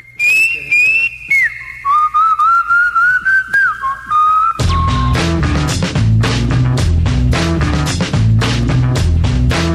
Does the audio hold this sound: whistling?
yes